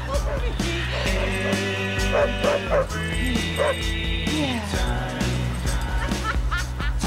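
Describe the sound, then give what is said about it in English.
Three dogs bark and yip in quick, irregular bursts, some whimpering in between, loud over a steady bed of background music, in a scene with Charlize Theron from the film Sweet November. “This is the best scene from her. Only three dogs.”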